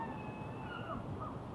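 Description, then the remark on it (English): Birds call softly, several overlapping chirps and caws drifting over a steady low outdoor hum, with no one speaking. “There's lots of bird noises right now.”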